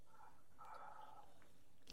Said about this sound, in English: As he takes another sip.